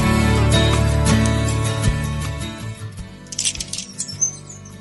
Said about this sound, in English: We're listening to the birds here outside trying to speculate what kind of a bird. I can't quite see where they are. I've got a lot of trees here.